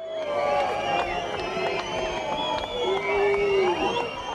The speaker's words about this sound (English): Can you hear that? It was in November 1989. Thousands and thousands of Berliners were gathered in a howling crowd.